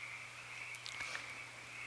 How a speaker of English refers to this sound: Shift awareness to sounds. The frogs are cheering you on. Oops, they stopped. They got self-conscious.